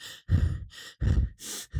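Heavy, rapid panting of a boy catching his breath after riding a bike all the way to the top: about five loud, breathy gasps in quick succession, each in-and-out breath separated by brief pauses, with no talking.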